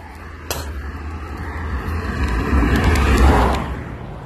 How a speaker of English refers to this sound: Hang on. Got a car coming.